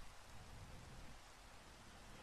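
Steady, even rainfall hisses across the whole clip with a dense, unbroken patter and no voices. No distinct thunderclap stands out, just a faint low rumble beneath the rain.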